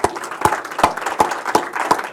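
An audience of Franklin residents applauds themselves: a steady wash of clapping with a few sharp, evenly spaced claps standing out roughly three times a second. It is moderately loud throughout, with no talking.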